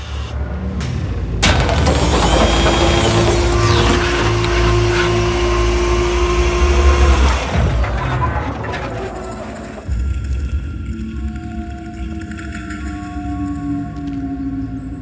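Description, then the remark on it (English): A loud, sustained mechanical whir and rumble as a door on an alien spacecraft opens swells for several seconds, then drops away to low steady electronic hums with a faint drone. “A door on the craft is opening.”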